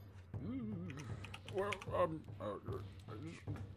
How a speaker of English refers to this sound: exciting typing action.